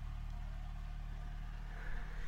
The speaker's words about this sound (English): Sorry, boat going past.